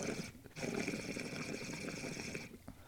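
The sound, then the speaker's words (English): Water rushes steadily through a 14 mm standard flow nozzle, a full, continuous gushing flow with a brief break near the start, loud throughout. “That standard, you can just hear the volume of water, it's moving.”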